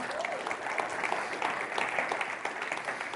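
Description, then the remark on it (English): A crowd of people claps steadily for the announcement of a new community life pastor, a dense, continuous patter of many hands sustained throughout, moderately loud and without speech over it. “Isn't that great? We can clap for that.”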